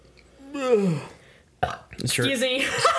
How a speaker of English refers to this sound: I just burped, sorry.